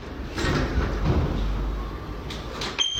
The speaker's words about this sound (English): And just goes up to a door and pulls it open